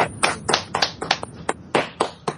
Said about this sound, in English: Would you like to give a quick 3-second clap for them? Because they did do a good job. Go on, man.